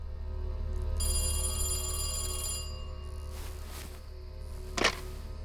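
A telephone bell rings in one sustained, bright metallic burst, then falls quiet over a low steady hum before a sharp click, like a receiver being lifted. No one speaks.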